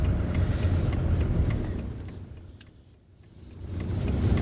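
A car engine rumbles low and steady as the vehicle creeps along at barely a mile an hour in lunchtime traffic through roadworks in Dunstable, with faint road noise and occasional clicks, dipping briefly before building again.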